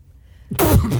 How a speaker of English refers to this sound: What was that? Like a pre-sneeze feeling.